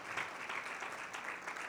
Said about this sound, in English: Clap your hands one time before the Lord. Praise God.